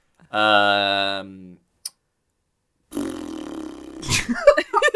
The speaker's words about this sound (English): I just blew a raspberry just for our listeners' benefit. I did not just do a massive fart.